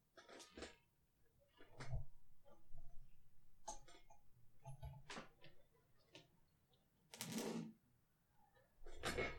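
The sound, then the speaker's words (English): A laptop charger being plugged in, heard as a scattered series of sharp clicks, taps and rustling handling noises with short pauses between them, and no one speaking. “My computer is getting low battery. I'm going to plug it in.”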